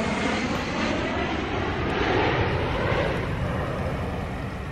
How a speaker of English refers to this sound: Sorry, we're in a flight path.